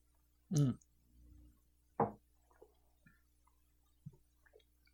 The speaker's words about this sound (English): Let's see what you guys have to say about all this as I take a sip of wine to freshen up here.